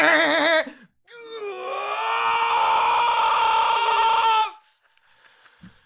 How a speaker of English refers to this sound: That's the goat alarm. I want to say something. Every time a goat gets sold or turned into a ghost, that alarm goes off? Yeah, it's awesome.